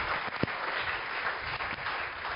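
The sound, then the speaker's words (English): A crowd claps hands together in a dense, steady wash of applause that holds at an even level for a couple of seconds, with a few sharper claps standing out and no voices. “Clap your two hands for the Lord.”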